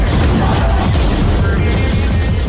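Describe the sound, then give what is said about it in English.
A loud, dense barrage of rapid gunfire with heavy booms and crashes from a movie trailer, layered continuously like an action-movie soundtrack, with no clear speech. “Oh, man, there's a lot of gunshots in that trailer, Phil.”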